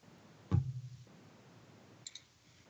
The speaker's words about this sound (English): Quit clicking. I hear clicking